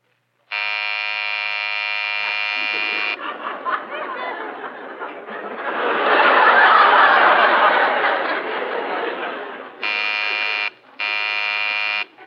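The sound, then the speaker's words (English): A long, raspy snore from someone asleep swells and fades in the middle, framed by a loud, steady electric buzzer tone from the front door before it and two short buzzes after. “…, you're snoring.”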